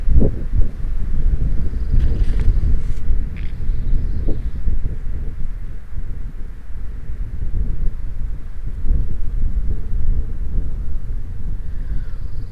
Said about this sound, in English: Here's a gust, a wind gust.